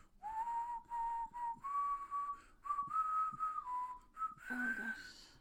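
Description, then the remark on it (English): A person whistles a slow, tuneful Christmas carol melody for others to guess during Advent, in clear sustained notes with short breaths between phrases, ending in a brief breathy flourish. “I'm going to whistle.”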